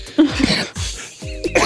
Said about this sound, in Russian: Ты, говоришь, ты терпел так долго, чтобы вот теперь, наконец, покашлять. Выкашляться.